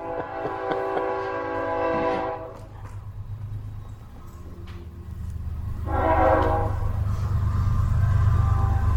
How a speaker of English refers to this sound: But I definitely can't stop that train from coming. So let's let it pass for a little bit.